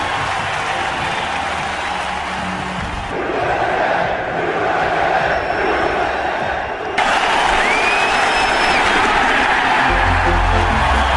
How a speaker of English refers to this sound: For tonight's ceremonial first pitch, and please welcome the President of the United States. Walked out on the field, and I mean, the energy and the crowd and the noise was really, really powerful.